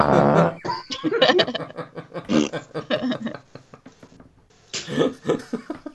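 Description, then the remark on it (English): A voice blows a loud, wet raspberry imitating a fart, then lively talk and laughter follow, with another sputtering burst near the end. “It's raspberry in listeners' ears there.”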